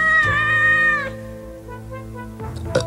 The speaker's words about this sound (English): Did you hear a cat burp? I'm afraid so.